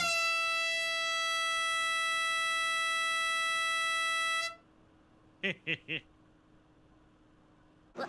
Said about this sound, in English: Then I brought my flashlight so we could find our way in the dark, and my scissors to cut wood into kindling, and an air horn to scare away bears.